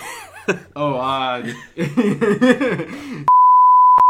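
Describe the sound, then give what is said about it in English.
A steady, high-pitched censorship bleep tone holds for just under a second right after a burst of chuckling and laughter, cutting off the voices abruptly. “It's not cut, it's bleep.”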